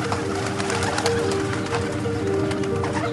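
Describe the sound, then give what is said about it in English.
Birds call with soft, steady cooing tones over a busy, continuous background hum, sustained throughout, with no one speaking. “And the birds came and devoured them.”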